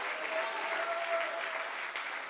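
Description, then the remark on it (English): An audience at a church service claps their hands together when the preacher calls for it, a dense, steady wash of applause from many people for a couple of seconds without pause. “Can somebody clap your hands and can somebody shout hallelujah?”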